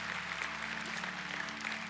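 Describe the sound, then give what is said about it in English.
A church audience claps for Jesus at a service, a dense, steady wash of many hands at a constant loud level with no speech, over a low steady hum. “We've clapped for a lot of reasons today, none greater than Jesus.”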